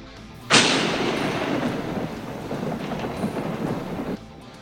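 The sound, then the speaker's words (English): A sudden sharp crack of thunder from lightning striking right near a backyard bursts out, then a loud, steady rolling rumble lasts about three and a half seconds before cutting off. No voices are heard. “at one point you actually can hear when lightning strikes right near our yard in the back several times, knocking things loose, but yet we kept the boat afloat.”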